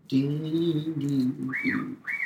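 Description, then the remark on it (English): Two arched, whistled chirps ring out from a bird outside an open window, over a low, steady, droning hum that fills the background throughout. No one speaks. “Just with you guys, there's been birds.”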